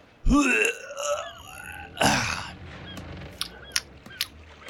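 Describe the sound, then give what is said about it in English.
A voice imitates a character throwing up after stepping off a beached boat: a loud, gurgling retch followed after a pause by a second, shorter heave, then a few faint clicks in the quiet that follows. “The boat beaches, and Giovanni steps off, stands up strong and tall, puts his hands on his hips, and then just throws up.”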